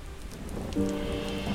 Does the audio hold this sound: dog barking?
no